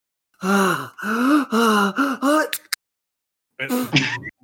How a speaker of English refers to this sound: Bless you. Bless you, I think. Bless you.